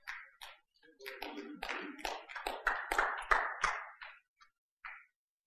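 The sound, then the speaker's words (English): Sparse, scattered handclaps from a crowd, building briefly over a few seconds with faint voices mixed in, then thinning out to a last few isolated claps. “I didn't expect to get too many claps on that one.”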